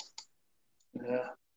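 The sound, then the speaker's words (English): Two sharp computer mouse clicks in quick succession as someone clicks furiously to catch up, then a pause and a brief burst of someone's voice. “I hear you clicking furiously to catch up.”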